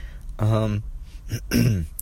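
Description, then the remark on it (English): Two fairly loud bursts of throat clearing as someone coughs up phlegm, with a rough, voiced, phlegmy quality, separated by a brief gap and a short breathy rasp in between. “I still have to take cayenne pepper on occasion, like you hear me coughing up phlegm.”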